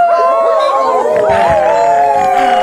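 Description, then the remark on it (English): A loud, dense chorus of wolves and coyotes howling, many overlapping wavering cries rising and falling together without pause for the whole stretch, with no talking. “My God, we're being surrounded by a growing stack of wolves, a cobbling of coyotes, quartet of ultra-intelligent mountain lions.”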